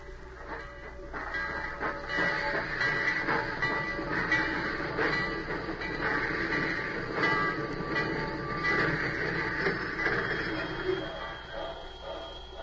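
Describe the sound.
A train rumbles steadily along the rails, a continuous rattling and clatter that stays fairly loud throughout, with faint murmuring voices in the background.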